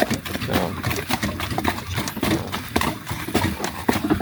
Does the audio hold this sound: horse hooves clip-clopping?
yes